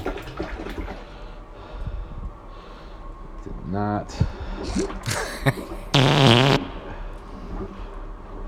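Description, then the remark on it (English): A toilet plunger squelches wetly in a couple of bursts as a clogged toilet is plunged after flushing, one short gurgling pop and then a louder sloshing suck of water, with a few brief spoken words around it. “Whoopsie days. Plunging.”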